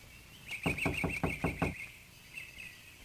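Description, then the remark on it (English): A locked side door handle is jiggled and rattled in about six quick, evenly spaced clunks, while birds chirp faintly in the background. “Went around to the side, and that door, too, was locked.”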